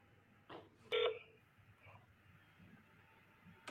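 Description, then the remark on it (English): A phone call being placed to a funeral home: a couple of short electronic dialing tones followed by a faint ringback hum, heard through a phone line against a quiet background. “He really called. He called the funeral home”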